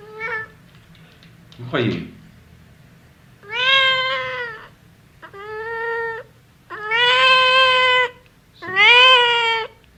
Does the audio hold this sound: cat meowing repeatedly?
yes